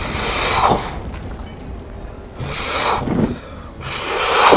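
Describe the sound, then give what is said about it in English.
Three broad, airy whooshes as the head and neck of a monstrous echo dragon glide in the air, swelling and fading in turn, each lasting under a second with quieter rumbling gaps between, no voices present. “You can hear the whooshing as this head and neck of some sort of monstrous echo dragon glides in the air.”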